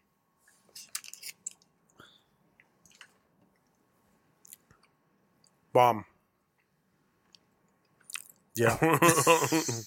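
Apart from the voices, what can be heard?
person chewing food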